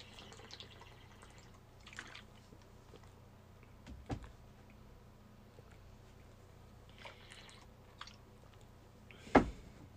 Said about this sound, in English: Hang on, let me sip my water. I'll remember.